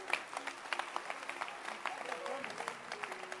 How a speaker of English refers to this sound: Clap your hands for Hannah.